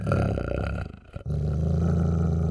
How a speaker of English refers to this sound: And it starts at a medium growl, and it gets lower and lower until you can feel it in your chest like the music from the party. And all of you outside can feel the vibration through the stone of the staircase. Oh boy. This dog is not joking around.